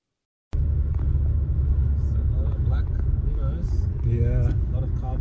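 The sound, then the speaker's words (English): A steady, heavy low rumble of a car driving along a road, recorded from inside the vehicle with a phone pointed out the window at passing traffic of BMWs and Mercedes, starting abruptly and continuing throughout, with indistinct voices talking over the engine and road noise. “because it was just, you know, pointing my phone out the window of the car and documenting what was happening on the road.”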